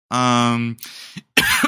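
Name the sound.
coughing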